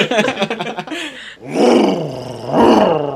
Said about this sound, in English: He brought his motorbike into my apartment, too.